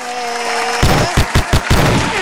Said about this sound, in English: Let's give you some hand claps.